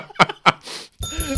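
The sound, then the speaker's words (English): A few quick, sharp hits, then a bright bell ring with sustained metallic overtones, a bell sound effect triggered by a hotkey. It is fairly loud, with no talking. “Yeah, I hotkeyed the noise of a bell to a bell.”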